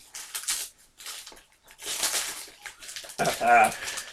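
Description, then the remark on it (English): Crinkling Star Wars wrapping paper, a couple of years old, being torn off a gift of a two-DVD pack (Juice and Tupac Resurrection) in several loud bursts, ending with a brief exclamation from a voice. “So this is Star Wars wrapping paper. Star Wars wrapping paper that's a couple years old.”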